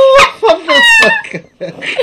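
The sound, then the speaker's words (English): A man's voice imitates a rooster crowing, a loud, strained rising-and-falling call broken into a few bursts, followed by a short breathy laugh. “You a motherfucking rooster. Shut up. Oh, cock-a-doodle-doo”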